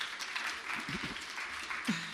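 A round of applause from a crowd: dense, steady clapping that holds at an even level throughout, with a few faint voices or brief whoops rising briefly beneath it.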